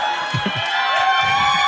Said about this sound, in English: A lot of claps for divorce. I like that.